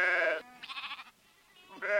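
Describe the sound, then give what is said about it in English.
Churro sheep bleating on the Navajo Reservation: a loud, wavering bleat, a shorter quavering call, then another strong bleat after a brief pause. No voices are heard. “November, Lyle McNeil will be back on the Navajo Nation, helping distribute another 30 churro rams, free of charge, to those committed to keeping sheep a central part of their lives.”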